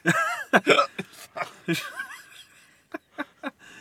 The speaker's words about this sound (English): Hiccups. I can't do this.